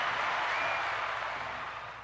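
A burst of group applause: many hands clapping quickly in a dense, steady patter, loud at first and tapering slightly over two seconds, with no one speaking.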